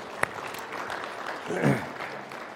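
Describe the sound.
An audience claps in a steady, dense patter for a few seconds for collecting more than 83 shoe boxes for Operation Christmas Child, with one sharp clap standing out early on and a voice briefly rising above the applause partway through.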